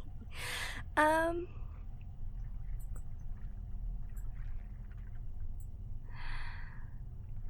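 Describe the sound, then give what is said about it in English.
A breathy sinus sniff followed right away by a short, honking nasal snort, then quiet before another soft sniff a few seconds later. “Sorry, just a sinus because I'm thinking, and this is difficult.”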